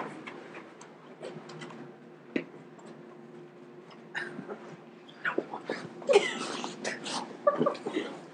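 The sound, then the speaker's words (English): A female dog moves about: scattered light ticks and scratchy clicks, like claws or tags, with a few short, high whimpers toward the end, all fairly soft. “Getting a dog was a bad idea.”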